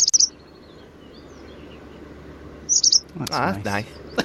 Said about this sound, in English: Which bird was this? Lesser spotted woodpecker. No. Wren or Serin? Wren. I am sorry. Oh. That was incorrect. Was it? It was a Serin.